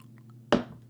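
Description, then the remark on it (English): A wet slurp as someone sips coffee, with a second sip starting at the very end, over a low steady hum and no talking. “Let me take a sip of my coffee right here.”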